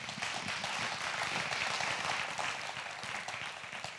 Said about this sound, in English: Can y'all give Steve a big round of applause?